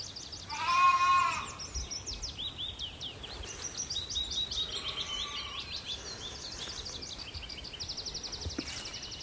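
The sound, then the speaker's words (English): A single loud sheep bleat rings out near the start, then a fainter bleat follows, from sheep scattered across an open hillside, with birdsong chirping and trilling steadily in the background. “There are scattered sheep across the hillside here.”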